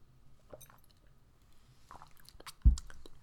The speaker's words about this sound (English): Anyways, I'm like so out of breath. I have barely touched my tea. Let me take another sip.